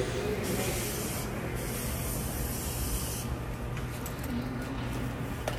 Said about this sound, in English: So this guy, this gentleman of color, a POC, if you will, just sprayed down the rail system for the subway in New York with probably Lysol. Mm-hmm. And he had gloves on just to hop it.